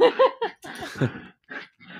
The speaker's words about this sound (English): And your dog is playing in the background.